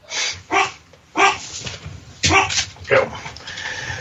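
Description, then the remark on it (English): Dogs bark in short, sharp bursts, around half a dozen yips and barks in uneven succession, loud, with a faint background murmur between them. “Apparently I said Infinite Crisis and it pissed the dogs off.”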